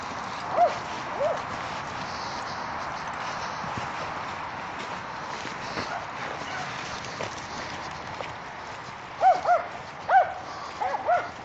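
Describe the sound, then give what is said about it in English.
A dog on a walk barks in the distance, a single yelp early on and then a quick cluster of short barks near the end, faint against a steady outdoor hiss. “likes barking at everyone.”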